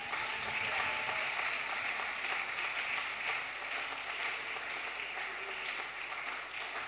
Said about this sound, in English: Let's give him a very big clap.